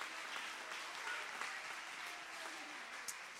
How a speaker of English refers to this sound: I want to preach a little old-fashioned, old-time message. You've got to be right with God. Clap your hands if you believe what I'm preaching.